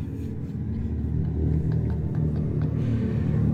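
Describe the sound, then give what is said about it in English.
Artificial exhaust sound from a Charger Daytona SRT electric car: a deep, steady growling rumble with layered low tones, holding at an even, fairly loud level for several seconds, with faint ticks above it. “of the first look at the Charger Daytona SRT, and it has artificial exhaust noise.”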